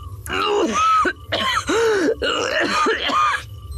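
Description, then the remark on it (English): A sick male guard's thick coughing fit: three or four harsh, throaty bursts in quick succession, loud, with a raspy voiced edge and no words. “He broke off into another coughing fit.”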